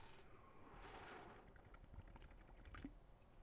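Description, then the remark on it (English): Someone takes a sip of water: a soft liquid slosh followed by a few faint gulping clicks, quiet and with no talking. “I can already tell this is going to be an episode of a lot of water drinking.”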